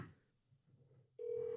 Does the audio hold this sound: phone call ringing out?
yes